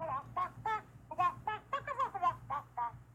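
Chickens cluck in quick, rhythmic bursts, chopped and arranged into a beat over a steady low musical hum, the outro of the show Robot Chicken, fairly quiet throughout with no talking.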